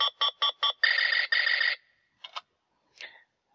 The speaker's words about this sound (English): If you guessed that that was an interactive Buzz Lightyear, you would be correct. He's even complete with a little blinky light.